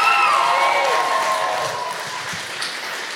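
A crowd bursts into applause and cheering, with high whoops and shouts over dense, steady clapping that stays loud and slowly eases off over about three seconds.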